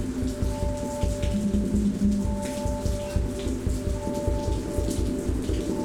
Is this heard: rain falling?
yes